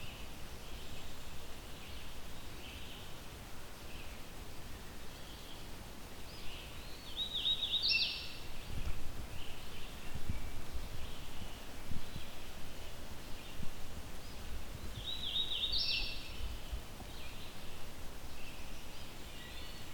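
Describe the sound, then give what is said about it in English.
A male hooded warbler sings two short, clear phrases, several seconds apart, over a steady rustling, breezy background in a mostly maple forest with a high canopy. “I still can't see this bird, but mostly yellow, black hood is what you would expect with a hooded warbler male.”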